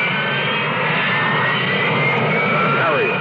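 A US Marine Corps Harrier jump jet engine roars loudly and steadily, a dense, sustained rush with a high whining tone layered on top, its pitch shifting slightly near the end.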